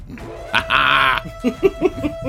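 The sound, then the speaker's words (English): A voice lets out a loud, high, strained half-second shriek imitating the cry of a creature that has just been hit and falls, followed by several short, choppy vocal bursts that sound like stifled laughter. “You hear a shriek and you see it fall.”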